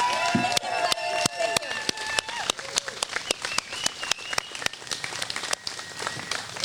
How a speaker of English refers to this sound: Ladies and gentlemen, one more round of applause for Christina Bohannon.